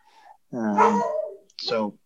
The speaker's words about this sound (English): My dog is barking.